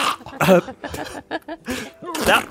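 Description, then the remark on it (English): A big, forceful sneeze erupts in loud, breathy bursts, set among short gasping and voiced sounds, with a second strong burst near the end. “That's a big one. That's a big sneeze.”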